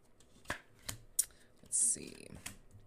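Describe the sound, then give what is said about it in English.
Tarot cards being handled during a Midnight City Tarot reading: a few crisp flicks and snaps as cards are drawn, then a short, dense riffle of the deck being shuffled, all fairly quiet. “Midnight City Tarot. What do we got?”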